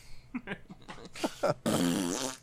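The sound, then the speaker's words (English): A voice imitates a fart with a few short sputtering blurts, then a longer, louder wet raspberry lasting nearly a second, fairly loud. “I made a fart noise.”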